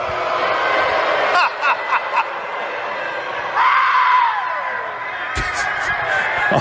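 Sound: crowd booing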